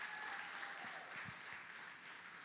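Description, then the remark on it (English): A crowd claps steadily, giving a man a great big hand, in a dense, continuous wash of applause that holds at an even level for the whole stretch, with no voices standing out. “Would y'all give him a great big hand?”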